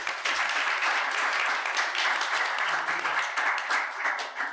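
Sustained audience applause, a dense wash of many hands clapping at a steady, fairly loud level for several seconds, with faint voices mixed in underneath.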